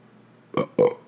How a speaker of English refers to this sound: You want to know why I'm belching right now? Because I just had a wonderful Asian salad, which altogether had 350 calories in it, had less than 200 milligrams of sodium, and also I had a little bit of salmon in it that was left over